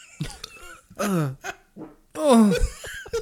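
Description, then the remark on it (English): Two loud, croaky burps with a gravelly, downward-sliding pitch, broken up by short coughing and throat-clearing sounds. Nobody speaks. “Got a burping in for it.”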